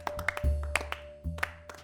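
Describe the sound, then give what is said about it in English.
A sparse smattering of applause: a few scattered, uneven handclaps over a low rumble and a faint steady hum, with no one speaking. “There's a smattering of applause.”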